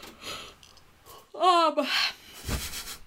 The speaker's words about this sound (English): We're gonna start doing a drinking game every time you yawn.